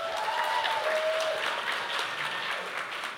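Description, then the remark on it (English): A crowd applauds steadily for about three seconds to vote for Phil and Sebastian's as the place to go in the morning, a dense wash of many hands clapping at an even, sustained loudness, with a brief high whistle-like tone near the start. “So let's vote here, and you're going to decide where we go in the morning. With a round of applause.”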